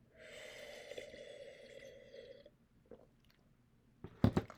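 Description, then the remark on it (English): A drawn-out slurping sip of the last of a slightly cold tea from a cup, lasting a couple of seconds, followed by a brief pause and a short, louder gulp or clink at the end. No one speaks. “Let me take one more sip of the last sip of my tea.”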